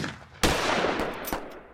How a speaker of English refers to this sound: And that's what made Floyd mad, and he said, gentlemen, I ain't going. And with that, the courtroom erupted in gunfire.